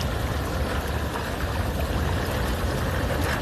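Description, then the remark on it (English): Hot tub jets churning steadily, a dense, continuous rush of bubbling water with a strong low rumble and broad hiss, holding an even loudness throughout with no voices. “This hot tub is still going, y'all.”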